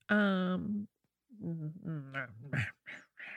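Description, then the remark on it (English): A person growls, with one long drawn-out rumble followed by a string of shorter, rougher guttural bursts, loud and separated by brief pauses. “That's all I've got is growling.”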